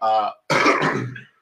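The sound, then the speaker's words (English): A brief voiced grunt, then a harsh, raspy cough, loud and rough for about half a second before trailing off. “So, you start coughing at him?”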